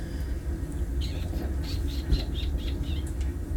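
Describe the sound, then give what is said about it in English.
A rapid string of small, high-pitched squeaks and chirps, roughly a dozen short bursts over a couple of seconds, from a rat named Remy, over a steady low rumble of background noise. “He squeaks and chirps.”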